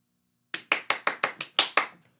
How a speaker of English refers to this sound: That was too many claps, wasn't it? For Always Sunny. That's at least five too many claps for It's Always Sunny.